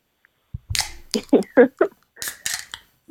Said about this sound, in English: So in true Funkaholic tradition, we crack one open and we cheers to a great episode.